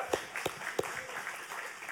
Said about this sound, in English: Let's give the worship team a round of applause real quick.